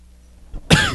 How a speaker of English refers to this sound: Oh, right in the mic. Okay. Knows what you cough like.